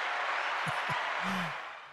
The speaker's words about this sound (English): Thank you. You know I wouldn't be able to make it through a show if I didn't get my applause there. I need something to try to make me happy, you know? Make me believe that some people are actually cheering for me.